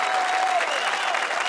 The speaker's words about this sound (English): can you put in like an audience clapping? Yeah, sure.